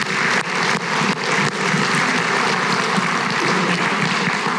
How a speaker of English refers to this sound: So just would thank God and for those people that serve, man, just let's give a clap of praise for that, right?